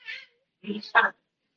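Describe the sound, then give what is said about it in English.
A dog whines in three short, high-pitched bursts, a brief thin cry followed by two louder, strained whimpers close together, otherwise quiet. “Sorry, I had a dog dying over there, apparently.”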